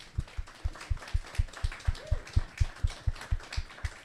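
A crowd applauds with steady, rhythmic claps in time, about four per second, punctuated by heavy low thumps, with a brief rising-and-falling whistle partway through.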